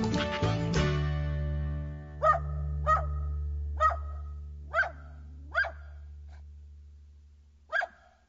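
A dog barks six times at an uneven pace, sharp, at the end of a recorded song about a man living with a dog in the city, following a brief burst of music that fades into a low sustained hum.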